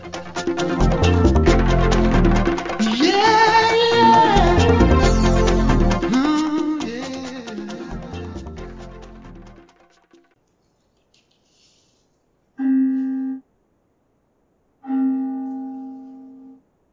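A mindfulness bell sounds twice at the Sunday Celebration of the Center of Spiritual Living in Huntsville, Alabama: two clear, resonant tones a couple of seconds apart, following a dense, busy stretch of sound that fades into silence.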